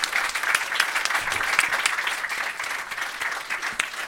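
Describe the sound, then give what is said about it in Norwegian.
An audience claps steadily throughout for author Kjersti Mjør, a dense wash of many hands at a fairly even loudness with no voices standing out. “En applaus for Kjersti.”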